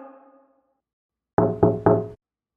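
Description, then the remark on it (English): Three quick, firm taps on glass, each with a short bright ring, fairly loud, after a faint fading tone and then silence; no voices. “Tap louder.”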